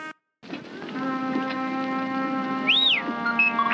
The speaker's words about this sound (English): So when they come across the dead Jawas, R2 beeps really sad in the mono mix.